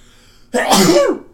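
human body sound, sneeze

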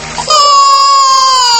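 human body sound, baby crying

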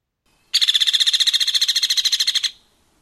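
bird, hairy woodpecker call

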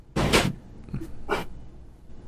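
animal, dogs barking

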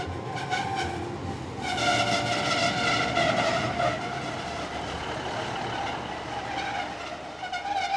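vehicle, train

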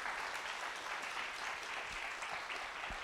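crowd, round of applause

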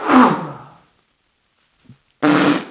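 human body sound, sneeze

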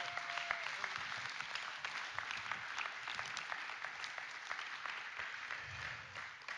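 crowd, audience applauding

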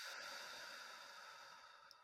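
human body sound, slow deep breath out

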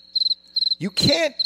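sound effect, crickets chirping

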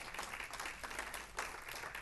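crowd, audience clapping in praise

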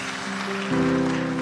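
crowd, audience hand clapping

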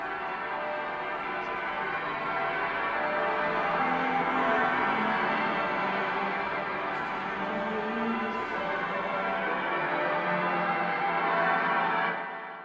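signal or alarm, church bells ringing

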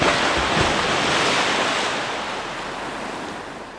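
nature, ocean waves crashing

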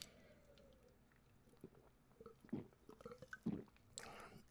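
food or drink, sipping a drink

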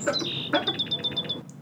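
bird, sparrow chirping

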